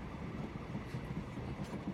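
Steady rumbling interior noise of a moving train, a continuous low drone with faint rhythmic clatter underneath, fairly quiet and unchanging throughout, with no voices.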